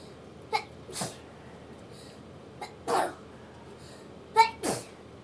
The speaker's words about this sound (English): Bless you.